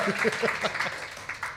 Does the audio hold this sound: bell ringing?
no